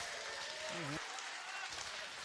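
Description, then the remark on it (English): An audience on a TBS comedy set by Ahmed Ahmed claps after he asks anyone over 40 to clap, a steady, dense wash of clapping that holds at an even level throughout, with a brief voice rising under it early on. “Anybody over 40 in here, clap if you're over 40.”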